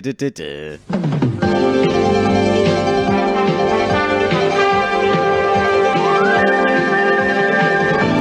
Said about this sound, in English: Oh, meow, meow, meow, meow, meow, meow, meow, meow, Charlie Says.